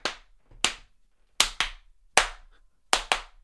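Crisp, bright hand claps in a song's pre-chorus strike seven times in a syncopated pattern, several falling in quick pairs, each ringing out briefly over a faint low rumble. No voices are heard.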